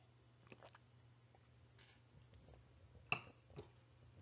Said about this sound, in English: Let me take a sip of my tea here. My throat is getting dry. Be right back.